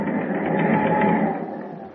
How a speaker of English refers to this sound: Meanwhile, in the darkness of a forward hold, three decks below, a hushed voice rises above the sound of the ship's engine.